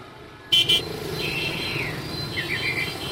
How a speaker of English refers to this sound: Saigon, a tropical, restless city. Mopeds define the street atmosphere. Saigon's 5 million residents own 1.5 million mopeds.